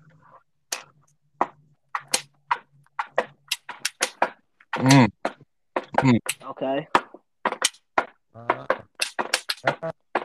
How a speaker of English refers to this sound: I'm finna make a beat with my hands. Hold on.